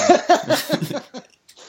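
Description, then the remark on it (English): A quick run of five or six coughs in rapid rhythmic bursts that fade out into a couple of softer breaths; no talking. “Sorry, I had a cough.”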